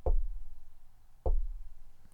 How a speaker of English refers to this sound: Do you hear the knocking? It's not like any other knocking I've ever heard.